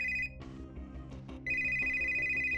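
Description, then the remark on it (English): A cell phone ringtone chirps in two bursts of a bright, warbling electronic tone, separated by a brief gap filled with muffled rustling and thumps, fairly loud, as the phone starts to ring while its owner keeps walking. “So as your feet continue to move, Winters, your phone starts to ring.”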